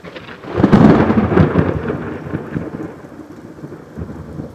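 thunder crash

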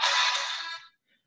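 phone ringing

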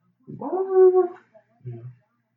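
dog whimpering

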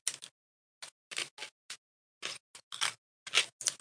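crunching on a snack

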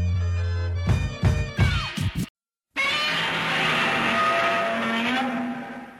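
giant monster roar

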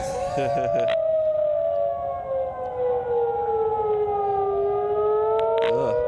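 tornado warning siren

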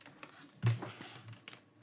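paper being unfolded

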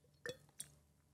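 glasses clinking

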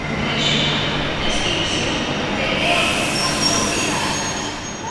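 train running on rails

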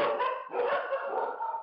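dog barking

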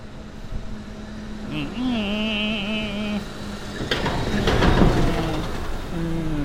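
garbage truck passing outside

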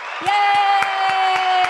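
audience applause and cheering

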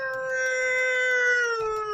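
wolf howling

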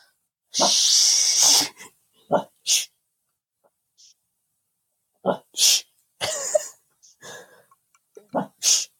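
puppy making noises

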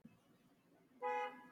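car horn honking

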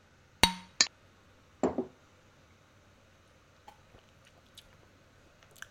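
glasses clinking

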